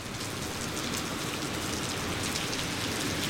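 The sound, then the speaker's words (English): Heavy rain pours down steadily outside the courthouse in Paris, Texas, a dense, continuous hiss of drops spattering on hard surfaces, with no voices or breaks throughout. “We walk out of the Paris, Texas courthouse into the pouring rain.”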